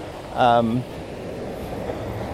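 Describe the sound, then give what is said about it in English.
A bike passes by, its engine giving a brief, loud droning whine that swells and fades within half a second, followed by steady outdoor road noise. “I lost my train of thought because of that bike.”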